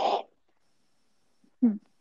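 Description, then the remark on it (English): A voice imitates an old man clearing his throat: a short raspy burst, a pause of silence, then a second lower, gravelly grunt. No speech, just the two brief vocal noises. “give us your best old man clearing of throat.”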